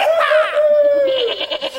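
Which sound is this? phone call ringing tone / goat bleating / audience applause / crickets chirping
goat bleating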